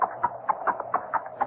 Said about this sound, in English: Now, wait a minute. Wait. That horse is no recording. It's either a mounted policeman or...